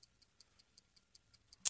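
A game clock timing a contestant's quiz round ticks steadily, about five light ticks per second, quiet and even, ending in a sharper, louder click or buzz at the very end.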